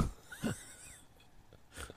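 Soft, raspy snoring from a woman, with two breathy, wheezing snores about a second apart, fairly quiet, with no talking.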